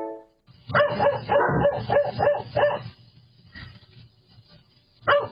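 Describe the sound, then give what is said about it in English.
A dog barks in a rapid, strained burst of about half a dozen barks, falls quiet for a couple of seconds, then lets out one more sharp bark. “That dog is really having a hard time.”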